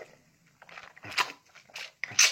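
A man chews whole lemons, with a few wet, crunchy bites and squelches spaced irregularly between quieter moments of mouth noise.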